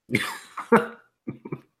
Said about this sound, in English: Oh, you might want to say that again so you can edit out that cough. I kind of want to keep the cough in.